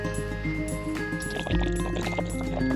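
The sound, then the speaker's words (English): Water splashes and gurgles steadily as it is scooped and poured into a Chinook bag while gathering water at Bayou Supree on the Backbone Trail, fairly loud, with no talking. “Through the magic of editing, we're going to fast forward through the water gathering part.”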